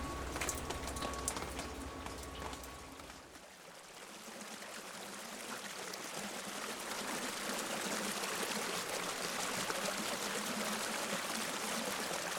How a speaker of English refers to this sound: This is the sound of a rainstorm on my house near the river during the rainiest season ever on record in Los Angeles. It was 2005.